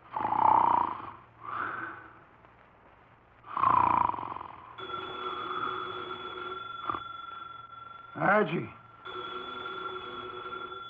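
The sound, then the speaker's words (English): A 300-pound man sitting in a chair in an office with his eyes closed snores loudly through his nose, three rough, rumbling breaths, before a telephone on the desk starts ringing with a steady electronic trill that carries on to the end. “His eyes are closed, and he's making sounds through his nose.”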